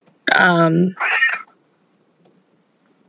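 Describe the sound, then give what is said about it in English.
A cat lets out a loud, drawn-out meow that slides downward, followed right away by a shorter, raspier call, then near silence. “If you can hear our cat, I'm sorry.”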